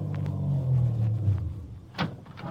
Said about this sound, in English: I started my car away from the curb slowly, keeping him in sight.